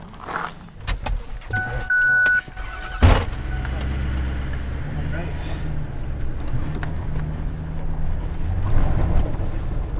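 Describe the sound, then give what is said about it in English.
A dirty truck's engine rumbles steadily and low from inside the cab after a sharp thump, with a brief electronic chime beforehand and faint voices now and then. “Whatever you need, grab, and then we'll jump in my dirty truck here.”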